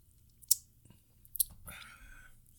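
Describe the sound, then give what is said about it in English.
Two sharp, wet mouth clicks followed by a brief slurping sip from a shot of whiskey, fairly quiet, with no talking. “I'm going to finish this shot off. But I'm just going to sip it, though.”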